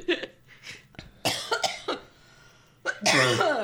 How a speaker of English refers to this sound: Are you a smoker? No, that's the seal cough I've had since I was a kid. My dad gave me that cough because he was a smoker. Oh. And it's called a seal cough? That's what I sound like when I get that deep cough.